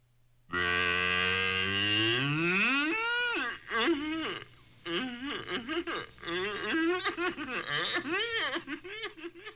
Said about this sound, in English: Here is our official Bobby Mack Show political analyst, Lulabell the Cow.